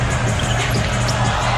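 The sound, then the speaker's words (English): A basketball arena crowd at a Pacers vs 76ers game roars in appreciation of Pascal Siakam after his step-back jumper, a steady, dense wash of cheering and applause that holds at an even loudness throughout, with a low rumble underneath. “Listen to this crowd and their appreciation for Pascal Siakam.”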